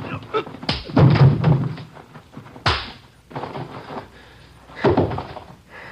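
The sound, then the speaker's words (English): Three heavy, dull punches land on a robbery suspect's body as a police officer subdues him during an arrest, a couple of seconds apart, each a sharp thump with a short rumbling tail, and a low grunt after the first blow. “I didn't think I hit him that hard.”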